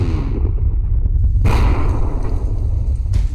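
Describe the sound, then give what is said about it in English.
A single loud gunshot, which hits a woman, cracks out about halfway through, its sharp burst ringing into a dull echo over a constant low rumble, with no voices present. “She's been shot.”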